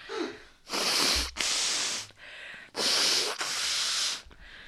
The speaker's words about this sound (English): Can I blow my nose since I'm a nerd? Into the microphone.